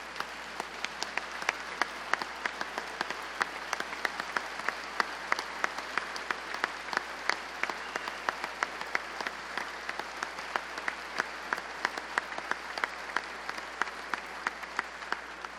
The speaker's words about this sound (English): Would you please join me in giving these JAG students and specialists here with us today a round of applause?